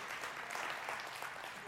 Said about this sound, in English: Because of the... Yeah, I'll let you clap.